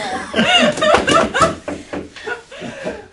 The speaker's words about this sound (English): You hear our knocks?